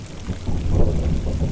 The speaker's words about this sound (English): It goes against better thinking, I know. A ridgeline in a thunderstorm.